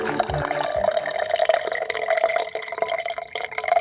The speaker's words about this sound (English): Sorry, I'm pouring coffee. Yeah, I got that. I thought you were out of what, a fucking like, fire hose? What the hell's going on over there? I was like urinating into a glass or something.